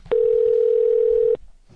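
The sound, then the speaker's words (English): A telephone dial tone sounds as a call is placed: one steady, unbroken, loud beep lasting just over a second, then cuts off abruptly, leaving faint background noise. “let's get Dan Fogler on the phone”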